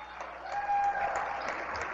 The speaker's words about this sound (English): And Krolikowski is going to check out for Centura. She gets a good round of applause.